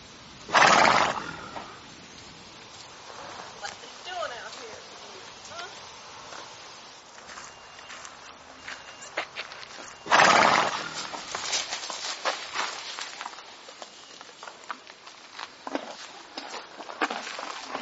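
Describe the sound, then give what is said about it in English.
A normally very calm horse, set off just before a tsunami hit, whinnies loudly, then neighs again about nine seconds later, with light, irregular hoof clops and shuffling filling the gaps and continuing afterward. “You know, I can't tell you that I can absolutely guarantee that this horse knew before that tsunami hit.”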